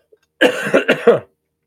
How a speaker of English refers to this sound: So, excuse me, I'm just going to have a little cough here.